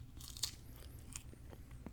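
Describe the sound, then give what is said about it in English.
Crisp bites and wet crunching chews on a guava fruit eaten without its skin, with a series of irregular crunches spread over a couple of seconds and no talking. “I'm going to try it without the skin because the skin's a little bitter.”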